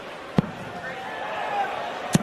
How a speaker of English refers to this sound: How's the sound of the darts that loud? I put the microphone up there. It's crazy.